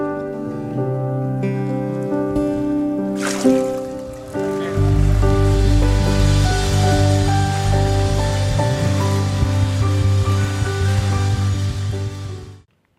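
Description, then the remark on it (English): A sudden burst of splashing water as a person is baptized by immersion rises over steady, sustained music, followed by softer sloshing and rippling as the music swells and continues to the end. “Lindsay, upon your profession of faith, I now baptize you in the name of the Father, the Son, and the Holy Spirit.”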